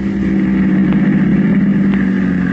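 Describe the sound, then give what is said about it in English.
A taxi engine idles with a steady, low rumble, a continuous droning hum that holds even throughout, as the taxi pulls up in front of a door and waits with the motor running. “Their taxi is just pulling up in front of the door.”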